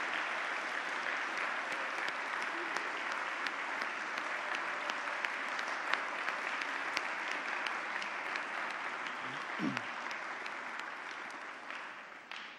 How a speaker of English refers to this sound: So if we could, this is a little different, but could I get all of the parents of the graduates to stand? Parents or primary caregivers, all the parents, if you would please stand. Let's give them a well-deserved round of applause.